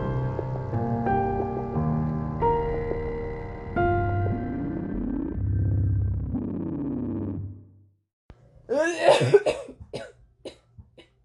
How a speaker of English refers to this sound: I actually did not intend to record you coughing, but whatever.